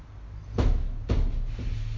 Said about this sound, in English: Oh, the door's open. The door's...